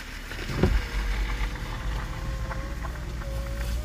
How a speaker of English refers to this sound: You see, I'm in an area that says no parking. It's for boats. And someone just pulled in.